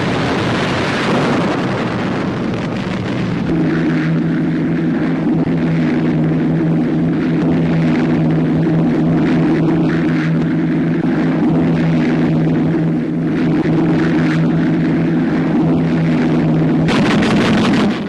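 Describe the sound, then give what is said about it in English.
Rocket-firing warplanes roar overhead on D-Day in Normandy, firing rockets into strong points, in a loud, steady engine drone with a low humming pitch, layered over heavy wind-like rushing noise that continues for the whole stretch, with no voices. “rocket-firing planes sending their fiery-tailed projectiles into strong points in the Normandy section of Hitler's so-called West Wall”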